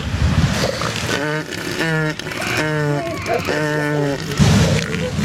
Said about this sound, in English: Yeah. Vroom, vroom. All right, like, I'm gonna say with elephant seals, the motor noises are the male